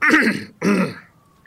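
A sheriff gives two quick, rough coughs in succession, fairly loud, with a brief gap between them and no talking around them.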